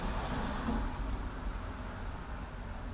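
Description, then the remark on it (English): A car drives down the street right by a bedroom at about 8:29 a.m., a steady low rumble with tire hiss that eases off slightly as it moves away. No one speaks. “And why is there another car driving down the street?”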